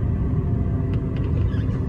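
A steady, low engine rumble fills the inside of a moving car, continuous and fairly loud, with a few faint, brief ticks over the drone and no voices.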